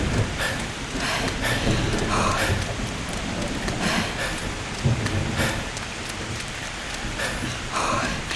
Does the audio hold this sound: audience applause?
no